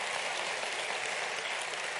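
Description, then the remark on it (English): An audience applauds for the choir, many hands clapping at once in a dense, continuous wash of claps that holds an even loudness throughout, with no voices standing out. “Let's get a choir hand clap.”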